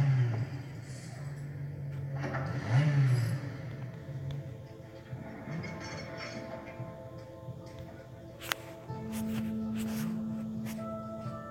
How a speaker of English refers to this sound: Sounds like the left bank's running lean.